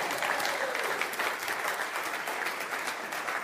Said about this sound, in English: So, you know, you can clap for them.